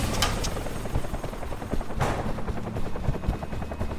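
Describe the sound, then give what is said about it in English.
A helicopter's rotor thuds in a rapid, steady beat, loud, with a few sharp bursts like gunfire cracking over the engine roar. No one speaks. “help me dump this equipment and make room in the chopper.”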